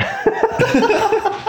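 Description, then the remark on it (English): A person coughs and splutters after tasting a strong dark chocolate candy, in a quick run of about seven or eight voiced bursts, fairly loud, with a choked, almost laugh-like quality and no talking. “He's coughing.”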